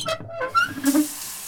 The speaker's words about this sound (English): And you hear a door close and the squeak of the shower knobs and the running of hot water.